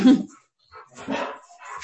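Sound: dog barking and whimpering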